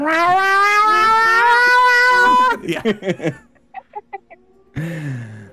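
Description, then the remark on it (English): A person's voice imitates a cat, drawing out one long, loud meow, then breaking into short choppy yowls and ending with a brief, falling meow. “Oh yeah, no, I from the very first meow I was up and ready to go.”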